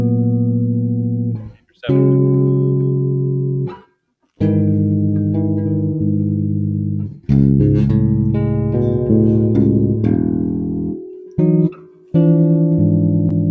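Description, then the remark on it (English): Guitar strums an E chord through a chorus effect, repeated several times with brief pauses between, each strum ringing out and chiming with a bright, shimmering sustain; no one speaks. “And it was sort of the spread sound that I do, you know, with my chorus. It rings out. It chimes out.”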